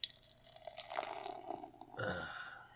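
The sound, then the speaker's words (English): Beer, just opened by popping its top, pours and splashes into a glass, with a trickling, dripping sound that swells into a fuller, steadier stream near the end. No one speaks. “And the pour.”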